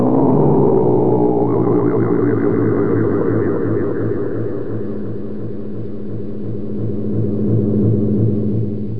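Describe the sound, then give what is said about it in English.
A huge atom bomb explosion roar, given an echo chamber effect, rolls on for the whole stretch as the opening of a show, a loud, deep rumble with ringing, droning tones that swell slightly again near the end, no voices. “See, it opens up, and you see this atom bomb go.”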